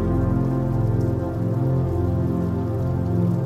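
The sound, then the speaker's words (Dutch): Steady rain taps against a bedroom window on a cold winter night in a dense, continuous patter, even throughout, with no voices and no other sounds breaking through. “En terwijl je hier comfortabel in je bed ligt, word jij je bewust van het geluid van regen, tikkend tegen je raam.”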